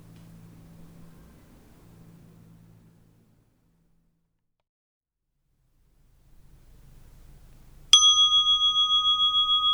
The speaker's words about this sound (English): We will now begin the meditation. You will hear the sound of the bell to mark the beginning and the conclusion of the meditation.